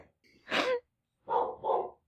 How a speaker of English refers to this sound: Oh my god, I've upset my dog. They're so angry.